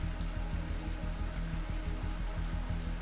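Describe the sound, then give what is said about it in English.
Steady rain, coming down hard, hisses evenly throughout, mixed with a low, repeating rhythmic pulse underneath. No one speaks, and the sound stays at a constant, moderate level. “You walk outside and it is now raining.”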